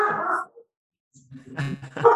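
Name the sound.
dog barking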